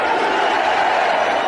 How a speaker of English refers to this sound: And here we go. Hear that crowd. USA chants.